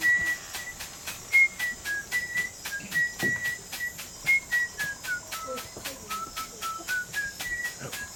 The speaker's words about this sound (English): That That's a nice whistle.